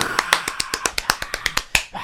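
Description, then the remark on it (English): A quick, steady run of about fourteen light finger claps, each a crisp, sharp snap-like tap, moderately loud, with no talking. “Oh, I should clap. Fingers.”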